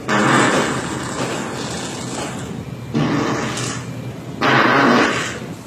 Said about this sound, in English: farting at work